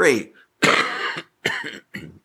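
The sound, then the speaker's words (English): A loud bout of coughing: several harsh coughs in quick succession, the first one raspy and drawn out, the later ones shorter, with brief pauses between them. “still have some cough”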